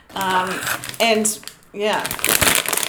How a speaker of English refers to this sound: I've got just a packet of pork crackles here, you can probably hear.